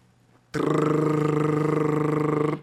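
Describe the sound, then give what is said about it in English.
A loud rolled-tongue imitation of a jackhammer or drill: a steady, buzzy tone lasting about two seconds, rapidly pulsing with a fast rattling flutter, starting abruptly and stopping cleanly, with no talking. “Now, there's another type of trua, which is you make the sound as if you were trying to pretend you were a jackhammer or a drill.”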